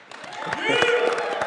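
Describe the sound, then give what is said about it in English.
An audience at Eden Chapel breaks into applause for one of the chapel's pastors, scattered claps building quickly into a fuller sound, with shouting and cheering voices mixed in as the noise swells and holds. “You can clap for him.”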